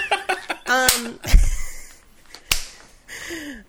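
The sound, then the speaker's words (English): A few sharp, smacking high-five hand slaps land at uneven intervals, the middle one loudest and fullest, while voices chatter and exclaim around them. “High five.”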